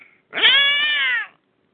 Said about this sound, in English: You want to listen to a cat get kicked?